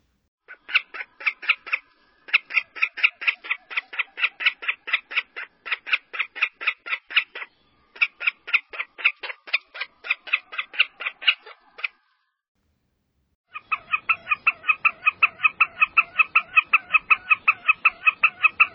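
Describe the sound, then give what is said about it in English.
Wilson's snipe calls: long runs of rapid, evenly spaced chipping notes in several bursts with brief pauses, then a denser, steadier series at the end, fairly loud, with no talking. “So one more time, a variety of sounds from the Wilson snipe.”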